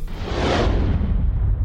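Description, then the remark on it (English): A loud whoosh transition sound effect rushes through in under two seconds, a broad airy swell that peaks early and trails off into a deep rumbling tail, with no voices. “That's the end of Foodie Friday, but I do want to stress what I just said before the whoosh noise, which was fasting is a great tool.”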